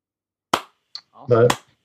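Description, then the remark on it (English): Two sharp hand claps land about a second apart in a slow rhythm, the second one overlapping a brief voiced sound from someone in the room. “With a slow clap too.”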